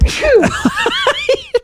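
A single loud, breathy sneeze bursts out, followed by a quick string of short, pitched voiced bursts that sound like laughter or vocal aftershocks.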